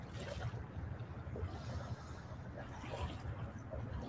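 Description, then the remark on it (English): Steady, soft wash of waves lapping on the shore at Terrapin Nature Park outside Annapolis, Maryland, a continuous low rumble with gentle swells rising and falling, no distinct breaks, heard alone without talking. “Perhaps you hear the waves in the background.”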